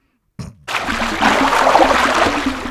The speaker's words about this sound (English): We should head out to the kiddie pool and get to it. Yeah, let's do it. Splash, splash